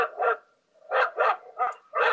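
Zeke, the speaker's dog, barks about five times in quick succession, fairly loud, with a short pause after the first bark and the rest coming in a steady rhythm.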